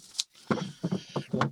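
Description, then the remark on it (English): A short scrape and clack of a drawer of toys being pulled open, quickly followed by voices talking over a faint background hum. “Uh-oh, he's getting into his drawer of toys.”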